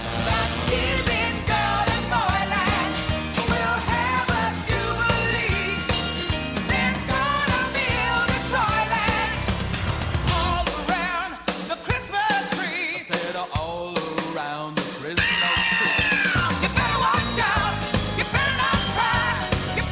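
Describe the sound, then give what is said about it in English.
A loud, busy Christmas pop song with a full band and sung vocals, with high shouts, screaming and whooping yells breaking out behind the singing, especially toward the second half. “With a lot of screaming and yelling in the background and all kinds of other weirdness.”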